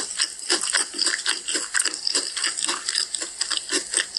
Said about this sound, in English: Sloppy eating. Oh my Jesus. God. It's super crunchy and the meat inside is really soft. Sounds great.